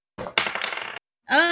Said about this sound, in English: Does it look like there's a dice roll happening here? Well, let's see. I'll roll some dice and we'll see how well they do it.